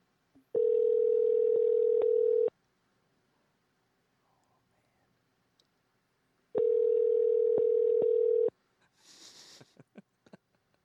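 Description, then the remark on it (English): Two steady, buzzing ringback tones from an outgoing phone call, each lasting about two seconds with a long silent gap between, followed by faint breathing and rustling. “Is it ringing?”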